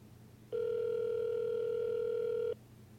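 A single steady ringback tone from an outgoing phone call to Silverman's mobile sounds for about two seconds, a loud, flat, mid-pitched electronic buzz over a faint low hum, then cuts off abruptly.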